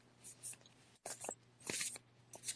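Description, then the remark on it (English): Tarot cards being reshuffled before one card is pulled, a series of soft papery riffles and slides in quick bursts with brief pauses between, over a faint steady hum and no talking. “I'm doing a reshuffle, and I'm going to pull one card to see what the outcome of this situation with this King of Coins is.”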